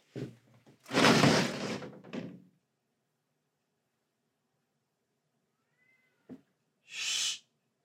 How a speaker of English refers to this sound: Sorry about that. Stupid fucking cats won't shut the fuck up, man.